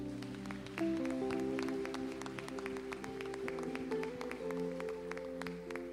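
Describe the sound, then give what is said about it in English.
An audience claps in praise to Jesus, a scattered burst of many hands, with sustained organ or keyboard chords playing underneath throughout. “Come on, give Jesus a hand clap of praise.”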